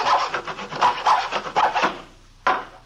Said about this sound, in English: We found him in the small workshop at the rear of the garage where he was sawing on a piece of plywood with a hacksaw.